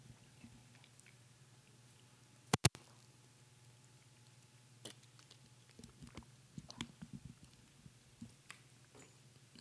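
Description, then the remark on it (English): Someone takes a sip of water: a couple of sharp clicks, then a scatter of soft wet mouth and swallowing sounds over a low, steady hum, with no one talking. “While you get your electronic devices out, Bibles and whatnot, I'm going to take a drink of water.”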